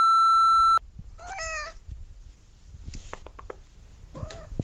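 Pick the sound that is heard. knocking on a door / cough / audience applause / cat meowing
cat meowing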